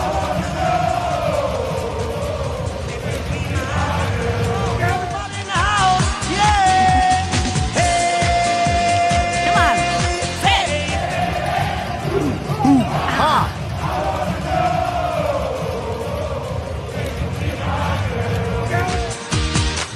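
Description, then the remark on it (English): A roaring football stadium crowd of Bombers fans cheers and chants together on a Sunday, a dense wall of voices with yells, whoops and rising bursts of excitement, loud and continuous throughout. “Sound in the stadium this past Sunday as Bombers fans.”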